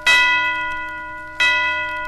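Two bright bell strikes ring out about a second and a half apart, each with a shimmering, sustained tone that slowly fades. No voices are present.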